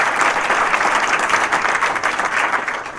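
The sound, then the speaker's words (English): A crowd applauds two college presidents for being present, many hands clapping in a dense, continuous patter that holds at a fairly even loudness for about three seconds, with no voices standing out. “So give our two college presidents a round of applause also for being here.”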